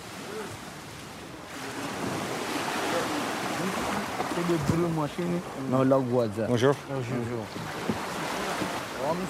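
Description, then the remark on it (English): At a beach, water washes steadily around a small fishing boat about 18 feet long, used to smuggle migrants from Africa into the EU, in a broad, constant rush that fills the scene, with a man speaking briefly over it partway through. “Getting into a small boat, a small fishing boat, which is probably about 18 feet long.”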